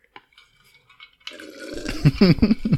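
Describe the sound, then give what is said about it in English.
Faint clinks and a soft metallic tap, then a rushing slurp of a sip from a flask, followed by several throaty gulps as the drink is swallowed. “Hold on, I'm gonna take a sip of this this flask.”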